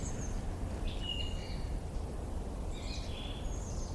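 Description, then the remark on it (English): A blue tit gives thin, high-pitched calls in a few short bursts, fairly faint, over a steady rumble of wind and outdoor background noise, on the outer rampart of a hill fort in the cold time of year. “That's not a song thrush, that's a blue tit.”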